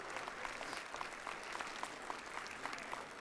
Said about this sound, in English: Yes. You're not clapping loud enough, because we got to not 1,000, we got to 2,245 jars of peanut butter.